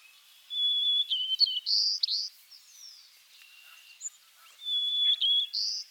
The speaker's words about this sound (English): One species that's been researched a lot recently is white-crowned sparrow. Another species that's really common in parks and people's backyards, in the U.S. anyway. It has a sweet little song.